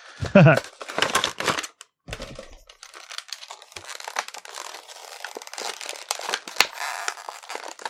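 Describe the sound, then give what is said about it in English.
The packaging of a One Piece Monkey D. Luffy figure being opened, with everything taped: continuous crinkling plastic with sharp tearing and peeling of tape, irregular rustles and clicky snaps throughout, and a brief voice at the very start. “Everything taped. Listen to that efficient packaging.”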